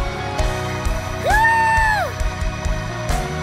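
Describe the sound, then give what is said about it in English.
A church audience claps and cheers in praise to God, a dense wash of applause with scattered shouts and one long, rising whoop that rings out above the crowd midway through. “Clap your hands and give God a praise right there.”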